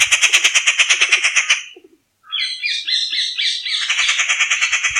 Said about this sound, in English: Rufous tree pies are highly intelligent birds and are known for their vocal abilities. They have a wide repertoire of calls, including harsh, screeching sounds, melodious whistles, and they can often be heard imitating the calls of other birds.